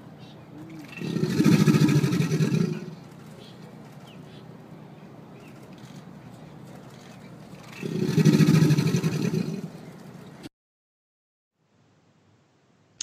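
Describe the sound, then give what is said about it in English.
Two deep, rumbling alligator bellows, a mating call, each lasting about two seconds and separated by a long pause, over a low steady background hum. Each call has a hissy, splashy edge as its resonance makes the water above the alligator splash up, before the sound cuts out. “So what the alligator is doing is it's a mating call.”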